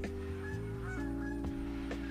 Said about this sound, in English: What is going on with these birds, y'all?